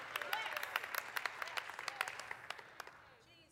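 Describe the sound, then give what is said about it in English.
An audience claps in a dense, steady burst of many hands, loud and crisp, thinning out and fading toward the end. “I mean, it's a great thing to clap at, right?”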